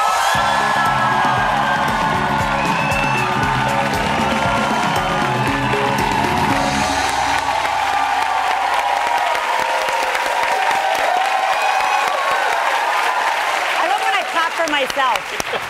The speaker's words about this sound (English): As you should. If I were you, I would clap for myself every time I enter the room. Why am I clapping? I think it's just the euphoria.